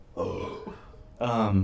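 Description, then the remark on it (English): Two close, throaty burps: a short one, a brief pause, then a longer, deeper belch that rumbles on to the end. Both are loud and up close, with no talking. “Dude, it's just a little burp.”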